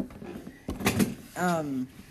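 A person tips backward in a chair: a sudden clatter and thump, followed by a brief startled vocal cry with a falling pitch.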